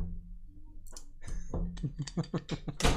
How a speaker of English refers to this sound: And close my door.